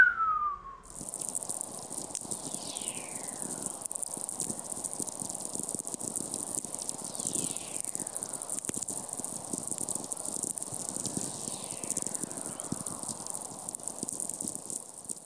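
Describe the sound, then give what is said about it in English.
Three gliding whistles sweep downward in pitch, spaced several seconds apart, over a dense bed of crackling radio static with a steady high hiss. These are whistler radio signals: a ping or crack distorted into a descending tone because higher frequencies travel faster than lower ones. “And so what starts out as like a ping or a crack actually comes back as a whistling sound, a descending tone, like this.”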